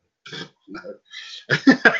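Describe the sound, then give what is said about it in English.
A voice makes a string of croaky, burp-like grunts: three short separate bursts, then a louder rapid cluster at the end, fairly loud with no speech. “Maybe they considered it the same thing as burp.”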